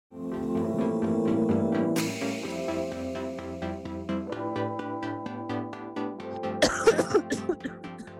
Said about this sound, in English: Oh my god, are you okay? Sorry, I have a cough.